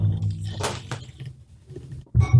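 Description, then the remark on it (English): Brief splashing and squishy sounds of spilled water, a couple of wet bursts followed by a low thump near the end, with no talking. “God damn it, I spilled some water.”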